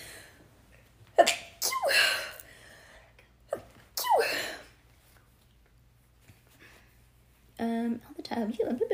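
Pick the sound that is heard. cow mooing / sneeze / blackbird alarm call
sneeze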